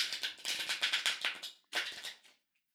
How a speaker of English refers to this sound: All right, angels. Go ahead and take a moment, close your eyes, listen into the sound of the cards being shuffled.